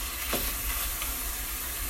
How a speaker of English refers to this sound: So when you're cooking ground meat of any kind, you know, there's like an initial sizzle and then it starts giving off tons of liquid, and what we want to do is cook it long enough that everything gets brown and that liquid cooks off again.